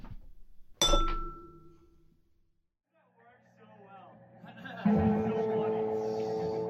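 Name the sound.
glasses clinking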